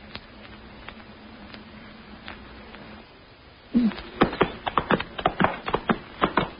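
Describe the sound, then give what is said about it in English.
Hooves of a ridden horse walking: a few faint, scattered clops over a low steady hum, then louder, sharp clip-clops in an uneven walking rhythm through the second half. “Watch out your horse doesn't stumble.”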